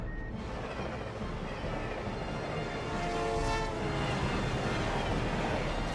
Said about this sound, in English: Good lord, there's another train coming in the opposite direction.